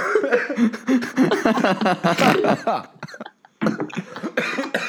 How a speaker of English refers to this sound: Sorry. Shut up. Don't cough.